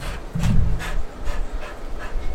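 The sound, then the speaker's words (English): A dog pants in quick, steady breaths, about five airy huffs in a couple of seconds, with a brief low whine early on. “Pumpkin's here. Pumpkin! Oh, I'm a little doggy. What's up, doggy?”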